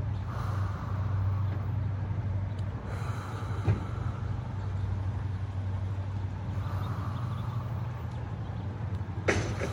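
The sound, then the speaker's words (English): Steady low rumble of traffic outside, with cars coming and going, swelling and fading as they pass, under a constant background hum; nobody speaks. “I got some cars coming and going, so excuse that.”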